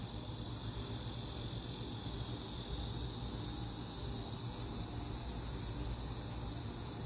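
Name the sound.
cicadas buzzing in trees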